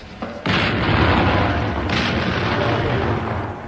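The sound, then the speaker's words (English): Guns of the 74th Medium Regiment RA firing over open sights: a sudden heavy boom followed by a second blast, each rolling into a loud, continuous low rumble that fills the whole clip, with no voices. “And there you hear the 74th Medium Regiment RA firing over open sights smack into the pudding itself.”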